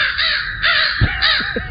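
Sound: crows cawing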